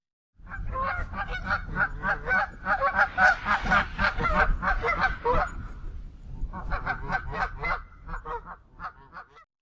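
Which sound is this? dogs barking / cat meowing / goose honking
goose honking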